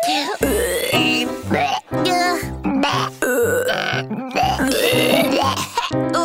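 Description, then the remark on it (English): A string of loud, drawn-out burps comes one after another, each rumbling and croaking with a different pitch, with short pauses between them. “That lets the people around you know that you didn't mean to bother them with your burp.”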